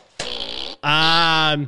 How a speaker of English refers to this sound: Got this, you got your trigger fart, and then you got your squeeze fart.